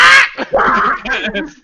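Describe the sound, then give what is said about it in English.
A person mimics a harsh, raspy jungle bird call, a loud squawking burst followed by a few grating, croaking cries, with no other sounds around it. “What horrible like... monster is making that noise? Is that even a bird?”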